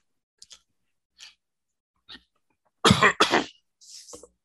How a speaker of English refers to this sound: As … coughs his ass off and needs to go get a COVID test.